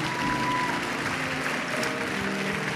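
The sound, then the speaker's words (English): A church audience applauds to thank God for his peace, a steady, dense wash of clapping that stays loud and even throughout, with a faint murmur of voices and a few tonal hums underneath. “We put our hands together and thank God for his peace.”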